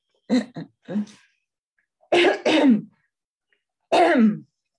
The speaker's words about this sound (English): Sorry, I have a little tickle in my throat. You got a frog. I'm just going to cough a moment, okay?